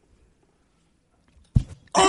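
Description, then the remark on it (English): After near silence, a microphone arm slams hard into someone's face with a sudden thud, quickly followed by a loud startled cry. “grabbed the mic arm. And why? Slammed it into …'s face.”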